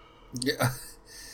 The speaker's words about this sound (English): Yeah. I'm sorry. I thought you were yawning for a second. I did for a second.